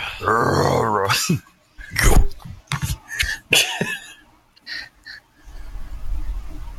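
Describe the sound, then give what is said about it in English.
A person makes a rough growling noise in imitation of an animal, followed by several short gruff grunts and breathy bursts, then quieter low rumbling. “No, do a low growl.”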